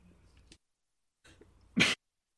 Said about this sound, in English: Sorry. I should pause to cough, but my bad.